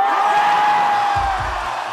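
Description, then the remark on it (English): A live concert audience cheers and whoops in a dense, loud, continuous roar with foot stomping, a sustained whistle running through it and a few low thumps near the end. “I've here elected to play for you the live version of the song, with all of its foot stomping and audience cheering.”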